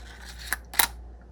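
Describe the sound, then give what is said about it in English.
A short metallic click, followed moments later by a sharper double click as a hole saw snaps into place on its mandrel, which is fitted in a drill. “You will hear a click when it's firmly in place.”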